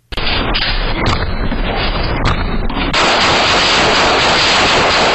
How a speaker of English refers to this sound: A man in Dallas fired more than a dozen rounds through his apartment after two people tried to break in. And here is the video of how it all went down.